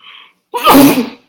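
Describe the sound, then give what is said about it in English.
A single loud sneeze: a short breathy intake, a brief pause, then a sudden explosive burst that trails off within about a second. “Nigga sneeze.”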